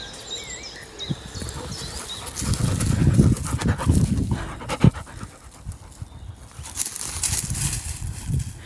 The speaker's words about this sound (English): If you can hear that, that's the sound of dogs who've just been having the most wonderful romp in the bracken. There's absolutely nothing to be seen, but Rain's very good at play acting, so she led the charge.